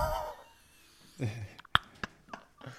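A short, low, sputtering fart rumbles up close, followed by a few sharp, quick pops and clicks in a quiet room.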